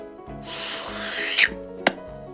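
A wet, squeaky rubbing and peeling sound, like suction cups dragging and popping off smooth glass, with a sharp release near the end. Close and moderately loud, no voices.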